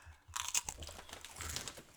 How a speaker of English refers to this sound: so I'm just going to keep eating because the table's full of food at this point. Yeah. I love it though. ASMR.